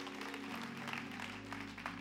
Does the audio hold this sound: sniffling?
no